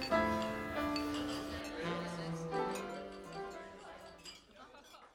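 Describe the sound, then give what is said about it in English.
Glasses of punch clink together in a toast, a few bright chimes ringing out over a murmur of overlapping voices that fades toward the end. “Cheers to punch.”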